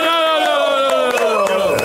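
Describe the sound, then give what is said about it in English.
A crowd cheering for an artist: a loud, sustained roar, with voices holding a drawn-out cheer that slides slowly downward in pitch while scattered sharp claps pop through it. “Make some noise for …!”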